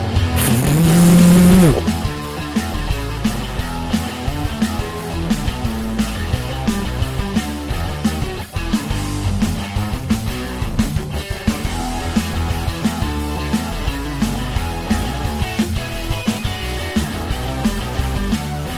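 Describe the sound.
A voice briefly imitates a roaring rocket engine for about two seconds at the start, a loud low rumble with rising pitch, then steady music plays for the rest.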